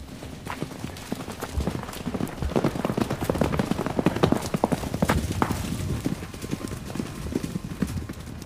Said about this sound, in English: they all went back to their horses, mounted up, and galloped away back to the town.